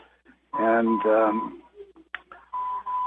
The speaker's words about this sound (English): All that beeping you hear is because I'm in the emergency room with my partner